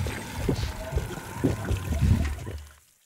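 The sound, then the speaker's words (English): A barrel chug-glug liquid sound effect of chugging and glugging, with about four heavy, rhythmic gulps in quick succession, fairly loud with no talking, cutting off abruptly at the end. “Put in the chug glug barrel sound effect now.”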